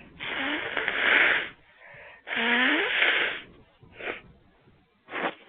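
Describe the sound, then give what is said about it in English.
Two long, honking nose blows with a wet, whistling edge, followed by two quick, shorter snorts or sniffs. No one speaks. “I need to blow my nose.”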